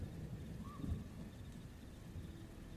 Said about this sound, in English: The rain falling on the back of your head, making your hair stringy, coming down in front of your face. The drips of water coming into the river just in front of you as you just slowly watch the body float away.